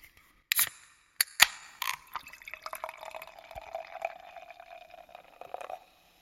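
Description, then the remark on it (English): A few sharp clicks and taps, then a fizzy drink pours steadily for several seconds, its bubbly crackle clear, with no one talking. “Oh, it's fizzy.”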